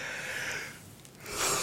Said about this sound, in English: Oh, pardon my yawn. It's okay. It's late. It is late.